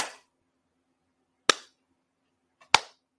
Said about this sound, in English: He was clapping at her. I was like, oh no, what you're not about to do is being, I will, no, we're not doing that today. I was like, did he just start clapping at her all rude?